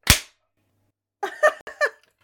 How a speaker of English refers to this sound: Three. Wait, do we go on one or after one? Is it three, two, one? I usually go after. Clap.